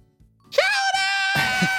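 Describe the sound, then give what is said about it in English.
The cry of the Pokemon Shellder: a single loud, high-pitched, nasal yell of the word chowder, held for about a second with a strained, buzzy tone. “I think it just yells chowder.”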